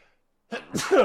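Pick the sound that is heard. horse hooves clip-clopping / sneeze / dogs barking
sneeze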